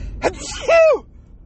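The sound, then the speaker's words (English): A single loud human sneeze: a short sharp intake followed by a forceful, voiced burst that lasts about a third of a second, then quiet room tone. “Oh, here comes the sneeze, ladies and gentlemen. It's coming.”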